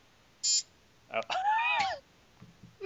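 A single short, bright electronic buzzer tone sounds near the start, followed by a wavering, drawn-out vocal sound and a few soft noises.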